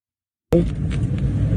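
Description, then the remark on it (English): After a brief silence, a steady low rumble cuts in abruptly and continues as a union worker drives his car along a line of traffic of people already two hours late to work, a dense engine-and-tire drone with no voices. “And this union worker, I don't know, Matt, I don't know if you have this video yet, but a guy recorded himself driving the line of traffic from people that are already 2 hours late to work.”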